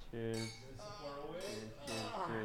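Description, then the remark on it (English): Glasses clink together in a toast, a few bright chinks, layered over steady sustained vocal tones that keep going underneath. “A traditional chink. Ching. Cheers.”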